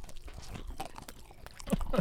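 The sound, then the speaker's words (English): Loud crunching of someone biting and chewing deep-fried dill pickles with a chipotle-like Fire on the Mountain sauce, with repeated crisp crackles in an irregular rhythm, growing louder toward the end, with no talking. “Well, it's crunchy. It's a lot of crunch on the mic.”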